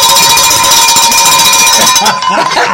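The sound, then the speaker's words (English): A bell is rung rapidly and loudly for about two seconds, a bright, sustained metallic clang with steady high overtones, then cuts off, leaving softer mixed background sounds. “He get the bell. He get the bell again.”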